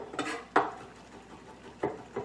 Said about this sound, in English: And we're also going to mince some fresh garlic as well. I just crush it in the board and give it a nice mince.